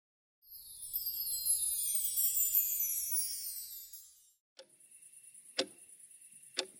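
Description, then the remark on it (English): A sweeping, airy whoosh fades out, then a clock in a bedroom ticks at 2:37 a.m., with two crisp ticks about a second apart over a faint steady hiss. “That's the clock in my bedroom, and right now it's telling me it's 2:37 a.m.”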